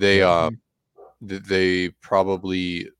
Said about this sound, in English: my dogs are opinionated as well, as you can tell.